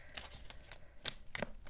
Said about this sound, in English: You hear me shuffling as I'm introducing the podcast, waiting for our four card spread to make itself apparent.